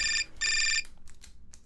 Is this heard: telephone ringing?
yes